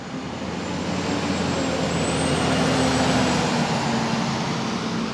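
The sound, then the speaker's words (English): Steady rumble of a fleet of tour bus engines idling and running in Sitka, Alaska, while a cruise ship is in port, a continuous low drone with a faint rising whine, no voices, holding for about five seconds. “A fleet of tour buses runs almost nonstop when a ship is in port.”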